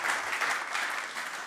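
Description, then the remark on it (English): An audience applauds steadily as a clap offering to God, a dense wash of many hands clapping at once with no pauses, holding an even, moderate loudness throughout. “Oh, come on, let's give him a clap offering right now.”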